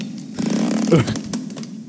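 Ropes creak under strain, a low buzzy groan that rises and wavers around the middle, broken by several sharp crackling snaps. No one speaks; the creaking holds steady and fairly loud throughout.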